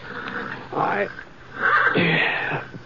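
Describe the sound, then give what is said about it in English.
An agitated horse in a corral neighs toward dawn in two shrill, wavering bursts, the second longer and louder, over a steady low hum. “one of the horses down the corral was sure upset about something.”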